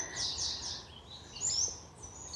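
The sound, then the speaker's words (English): Several birds sing high, bright chirping phrases that overlap continuously in a small remnant forest during the day, with a soft woodland ambience underneath and no voices present. “The birds are singing in this day.”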